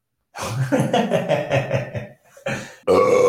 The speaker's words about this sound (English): I wasted an awesome burp before we started the show. Not that one, a previous burp.